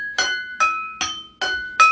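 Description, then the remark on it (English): A new chime bell is struck five times at a steady pace, each hit a bright clink followed by a clear, high ringing tone that sustains briefly before the next strike. No one speaks. “I got a new chime. I got a new bell.”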